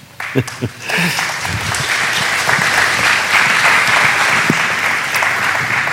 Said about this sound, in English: It's lovely. There was such a polite clap. I thought that was awesome.